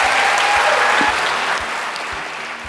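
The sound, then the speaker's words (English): A crowd at a How To Academy event applauds Ruby Wax and Julia Samuel steadily, a dense wash of clapping that holds at a fairly loud, even level, with a few low thumps underneath and no one speaking over it. “That's all we have time for, but please can we give all a huge round of applause for Ruby and Julia.”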